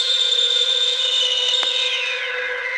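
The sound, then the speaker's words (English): Steady vinyl surface crackle and hiss from a second U.S. pressing of an album over 40 years old runs throughout, layered over a sustained tonal hum, with one sharper pop partway through and no voices. “we have the lovely crackle. This album is over 40 years old.”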